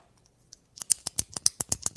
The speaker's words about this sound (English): What was that? That's my pen clicking.